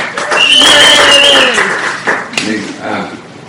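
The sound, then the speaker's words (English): A burst of crowd applause with cheering voices and a high, sustained whistle, loud at first and then tapering off with a few scattered claps over about three seconds. “And that's the third, and let's hear it for Jacob.”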